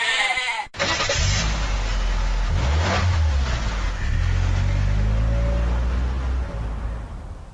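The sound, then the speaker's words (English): A goat bleats in drawn-out, wavering calls over the steady rumble of a car engine that revs up, fairly loud, with no one speaking. “The only remaining question is, do you actually want to win a car? Or would you rather win a goat?”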